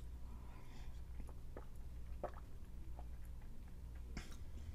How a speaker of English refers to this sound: Oh my gosh, that was such a huge gulp.